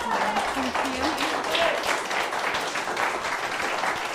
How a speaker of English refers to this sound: So give a round of applause